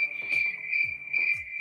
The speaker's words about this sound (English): I hear crickets already.